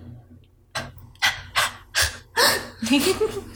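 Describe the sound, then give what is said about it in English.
A voice imitates the sharp, startled inhaled gasps of the jerk when falling asleep: about six quick, breathy intakes in an uneven run, fairly loud, with no words spoken. “Yeah, you're more of an inhale and less of an exhale scream.”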